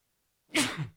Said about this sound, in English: Hang on. I got to sneeze.